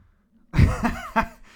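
Someone clears their throat in three rough, gravelly bursts, the first loudest and the later two shorter, against a faint low hum and with no speech.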